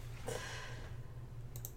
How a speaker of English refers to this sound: I hope you're excited because that typing sounds quiet to you, but during the when you're editing, it's gonna sound like clack clack clack clack clack.